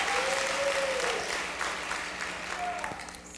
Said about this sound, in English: Come on, somebody, give the Lord a clap offering today.